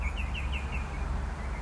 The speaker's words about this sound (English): You'll get to hear more of our bird calls in there. We've got some yummy ones.